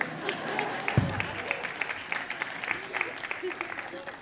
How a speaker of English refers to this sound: Three of you just clapped.